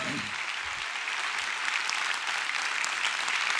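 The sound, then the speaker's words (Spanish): A church audience claps for God during a service, a steady, dense, even wash of applause that holds at a constant level throughout, with a brief trace of a voice at the very start. “Wow, denle un aplauso fuerte a nuestro Dios.”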